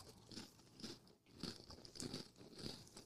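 Crisp crunching of dry Cheez-It Grooves crackers being chewed, with about six rhythmic bites spaced roughly half a second apart, each a crackly burst; no talking.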